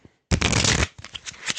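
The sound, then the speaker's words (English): A pack of playing cards is shuffled by a magician: a loud, dense riffling burst lasting about half a second, followed by softer flicks and taps as the cards settle. “That is a pack of cards being shuffled.”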